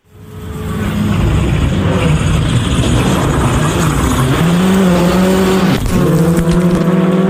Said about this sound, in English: How is your camera after Shane took that out in the rallying car? Yeah, I should have known better. I put my GoPro down on the inside of a corner at I think it was stage two.